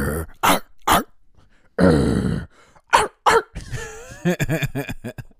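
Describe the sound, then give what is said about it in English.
People imitate a dog with their voices: a few sharp barks, a long rough growl, then a rapid, overlapping burst of bark-like yelps from several voices, loud. “Do a bark before we go for ….”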